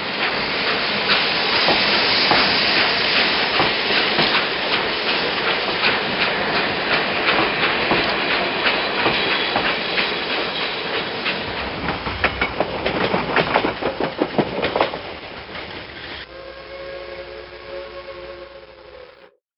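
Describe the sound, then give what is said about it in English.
A train bound for Middlesbrough runs steadily along the rails on a Wednesday morning with a loud rumble and a quickening clickety-clack rhythm, then the clatter gives way to a sustained whistle-like tone before cutting off. “Janie shed a few tears when she saw him off on the train back to Middlesbrough on the Wednesday morning.”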